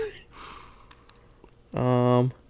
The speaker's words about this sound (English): This cough drop's so good, by the way. I know. I would eat them all the time.